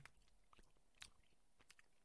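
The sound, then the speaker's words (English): Quiet chewing of a soft, chewy, round candy that looks like a marshmallow, powdery with a non-crunchy candy outer shell: a handful of moist, sticky smacks and squishes at an irregular pace, with no one speaking. “I figure I'd give this a quick taste test”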